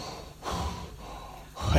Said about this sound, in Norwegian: Du träcker in den goda luften och så blåser du ut den onda.